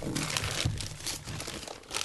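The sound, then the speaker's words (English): Paper crinkles and rustles continuously in bursts, like wrapping paper being torn away and crumpled while a gift wrapped around and around in lots of paper is unwrapped, revealing a Fantasy Flight game, with faint voices murmuring in the background. “It's so much paper. You would never know. It's nothing but paper.”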